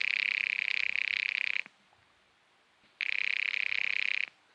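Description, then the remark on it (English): A telephone rings twice as a call is placed to John Reardon's widow, each shrill, buzzy ring lasting about a second and a half with a pause between, loud and steady with no voices. “Expense account item 4, 10 cents, another phone call.”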